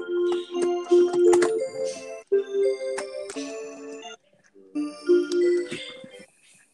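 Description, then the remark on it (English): A clock sounds, a run of bright ringing tones struck in quick succession, pausing briefly before the pattern repeats. No one speaks over it. “The clock. What is that noise?”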